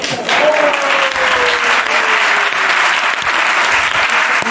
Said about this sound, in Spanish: Este chaval es increíble, ¿eh? Este tío como aplaude, ¿eh? Se ha cargado 20.000 átomos de un ostión. Madre de Dios, vaya fuerza física.